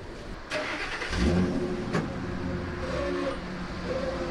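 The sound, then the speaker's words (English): A dump truck that takes collected paper to a trailer behind Claremont's middle school rumbles and revs steadily as it drives off, its low droning tones rising slightly, with a couple of sharp metallic knocks early on and no voices. “dump the bins loaded with paper into even bigger bins, and these are emptied into a dump truck, which takes the paper to a huge trailer behind Claremont's middle school.”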